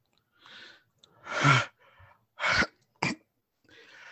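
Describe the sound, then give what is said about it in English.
A loud sneeze erupts after a breathy inhale, followed by a couple of shorter, sharp bursts and more heavy breathing, with no talking. “Ugh, sorry, I had a sneeze.”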